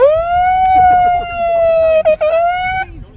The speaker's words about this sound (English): So here's a clip of the lads from TPM coming onto the beach with their sirens and bullhorns.